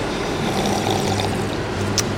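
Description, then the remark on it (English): Several people sip hot Reverie Coffee together at once, a steady wash of soft slurping and liquid sounds with a brief sharper sip near the end, and no talking. “Let's all take a sip of coffee together.”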